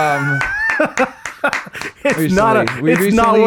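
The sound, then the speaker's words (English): A few loose, irregular claps ring out amid laughter and excited, sing-song voices, with the sharp slaps scattered across a few seconds rather than forming steady applause. “It's not worth clapping for.”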